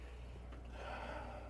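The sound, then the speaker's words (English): A single close, breathy inhale through the nose, swelling into a soft airy rush that lasts about a second, as someone takes a long sniff of a 4-year single-barrel bottled-in-bond whiskey from a glass right by the microphone. “No, you got to do the sniff at the mic.”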